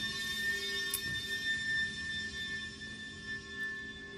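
A steady, sustained doomsday alarm siren drones on for several seconds, holding a constant high-pitched tone layered with harmonics over a low rumble, with no voices.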